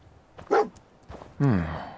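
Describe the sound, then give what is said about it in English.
The dog Dogmeat barks twice while picking up a scent trail, a short sharp bark followed by a longer, drawn-out bark that falls in pitch, clear with no one talking. “Dog meat pick up the scent again.”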